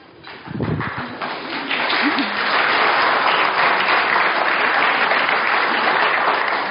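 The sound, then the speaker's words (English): A church audience breaks into applause for two guest speakers, steady and full, many hands clapping in a dense, continuous wash that swells quickly and holds loud, with a brief voice at the start. “Thank you for clapping.”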